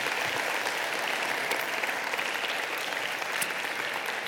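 An audience applauds steadily for several seconds, a dense wash of many hands clapping at an even, sustained loudness with no voices rising above it.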